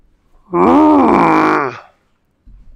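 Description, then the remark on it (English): A deep, guttural roar of displeasure voiced by a person imitating the giant Grop as he turns a bird's nest from a pine tree upside down, one loud sustained bellow rising then sagging in pitch for over a second before cutting off into quiet. “Gazing blearily around, Grop reached out a hand the size of a beach umbrella, seized a bird's nest from the upper branches of a towering pine tree, and turned it upside down, with an apparent roar of displeasure that there was no bird in it.”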